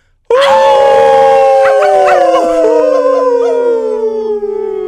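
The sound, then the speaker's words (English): Several people howl together like wolves on a count of three, a loud, sustained chorus of overlapping voices that slowly slides downward in pitch after a brief moment of silence. “And if you're at home, all you listeners, go ahead and get ready to howl.”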